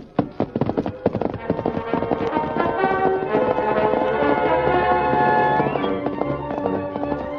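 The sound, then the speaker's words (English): Quick, clattering horse hoofbeats burst out loud, then fade under a swell of sustained, ringing tones as the Lone Ranger's great horse Silver gallops away in the darkness. “Leaving Tonto on guard, the Lone Ranger set off in the darkness on his great horse, Silver.”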